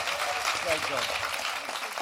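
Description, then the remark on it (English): An audience applauds in a dense, steady wash of clapping that holds at an even level for the full two seconds, with faint crowd voices mixed in underneath. “Big round thank of applause, you.”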